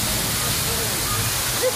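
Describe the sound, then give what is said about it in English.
Steady rushing of running water in a rainforest, a dense continuous hiss that stays even throughout, with no breaks or distinct splashes. “Here the water.”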